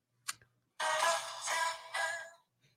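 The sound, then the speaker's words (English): A mobile phone ringtone sounds a bright, tinkling melodic phrase in three quick swelling bursts, preceded by a brief click, with no one talking. “Is that your ringtone?”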